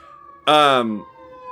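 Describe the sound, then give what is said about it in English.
An emergency vehicle siren lets out a short, loud wail that slides downward in pitch for about half a second, over a steady faint tonal hum. “Oh fuck, I hear some sirens.”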